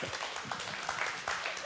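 A crowd gives a morning round of applause for their newest elder, a dense patter of many overlapping hand claps holding a steady, moderately loud level throughout the short burst, with faint voices mixed underneath.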